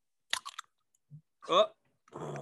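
A Red Bull energy drink can snaps open with a short crackling hiss, then a soft gulp, followed by a satisfied vocal sigh and a burst of noisy sound.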